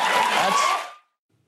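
A studio audience bursts into loud cheering and applause for about a second after a joke about an unvaccinated man dying, then the sound cuts off abruptly into silence.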